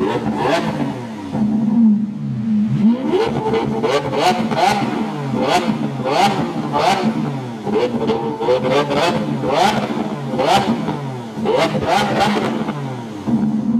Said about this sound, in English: Those sounds that you just heard are all intentional, with the high-pitched roar of the engine triggering excitement